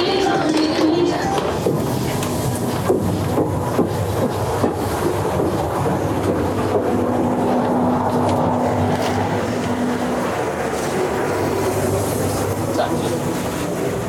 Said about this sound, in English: Right, where are we now? We're in the clicking room, which is quite loud at the moment. How long is this loud? I'll just hold my mic closer to your face. Okay, this is basically where all the knives are stored and all the hand cutting is done